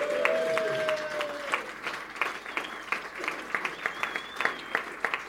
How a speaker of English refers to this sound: They've been absolutely brilliant. So, you know, give them a big cheer and, you know, just say thank you.